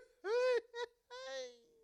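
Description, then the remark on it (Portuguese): A voice imitates a stifled, strangled scream attempt, like someone trying to cry out in a nightmare: three strained, moaning vocal bursts, the middle one short, all fairly loud. “parece que eu estou num pesadelo onde eu estou tentando gritar”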